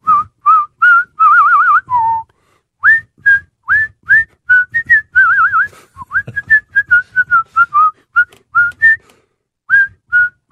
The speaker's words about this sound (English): Whistle along? Whistle along at home, wherever you are. Just start whistling.